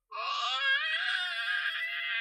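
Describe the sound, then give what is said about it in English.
A person lets out a sustained, high-pitched vocal screech, loud, holding steady for about two seconds with no other sounds or talking around it. “I'm not doing the screeching noise.”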